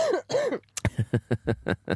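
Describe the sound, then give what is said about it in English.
Two drawn-out, strained vocal sounds lead into a quick run of sharp, rhythmic coughs, about seven harsh bursts in a row, fairly loud with no talking, from a person with a chest infection. “Oh, and a lot of coughing. I've got a chest infection, sorry.”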